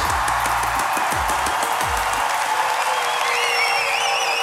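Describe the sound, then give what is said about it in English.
Loud, sustained applause from a church audience in Switzerland welcoming a guest speaker, dense steady clapping with cheering mixed in and a few high whistles rising above the noise near the end. “And we have a tradition when we have a guest speaker, we get up and we give him a loud, tremendous, noisy, here's the word noisy, noisy, passionate, applause.”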